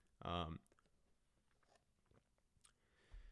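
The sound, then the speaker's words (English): A brief slurping sip of coffee near the start, followed by faint mouth and swallowing noises and a soft thump near the end; no one speaks. “Sorry, I'm drinking coffee, so I'll take sips every now and again.”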